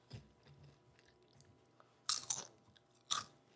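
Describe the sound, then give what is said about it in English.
Loud crunches of a crisp snack being bitten and chewed, with two sharp bursts of crackling about a second apart after quieter mouth sounds, and no talking. “Well, it's super crunchy, which is good.”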